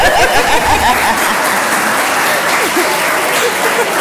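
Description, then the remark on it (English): An audience applauds steadily at the close of a live storytelling event, thanking the panelists, a dense wash of many hands clapping at a constant loud level for the full few seconds, with a faint chuckle or two mixed in near the start. “Applause.”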